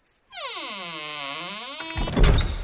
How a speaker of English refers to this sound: The heavy door swung closed, sealing me in.